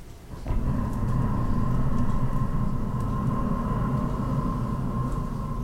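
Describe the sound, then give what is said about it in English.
Bones bowed as an instrument, heard through a hydrophone taped on as a contact mic, give a sustained, windy, breathy roar, rumbling low with a steady thin tone running through it, starting abruptly and holding loud throughout. “I have a hydrophone taped on as a contact mic.”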